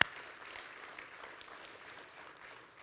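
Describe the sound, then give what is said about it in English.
A round of applause from a crowd for a couple celebrating their 40th wedding anniversary, steady dense clapping that holds at an even, moderate level for a few seconds without any voices over it. “We should give them a round of applause.”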